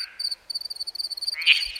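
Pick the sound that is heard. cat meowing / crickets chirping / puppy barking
crickets chirping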